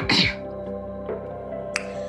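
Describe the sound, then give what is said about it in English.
A woman gives one short, loud throat-clearing burst at the start, then a low hum hangs on quietly, broken by a brief faint click near the end. “Okay, but you the woman of God had to clear her throat because she was with the man of God for a very long time, right?”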